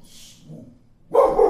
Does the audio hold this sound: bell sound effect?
no